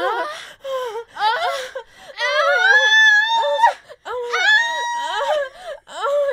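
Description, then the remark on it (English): A voice imitates how a woman sounded while getting tattooed, with orgasmic moaning and screaming: a string of loud, high, wavering wails and cries, several short bursts and one long drawn-out scream in the middle. “She sounded like she was having a full-blown orgasm. She was screaming.”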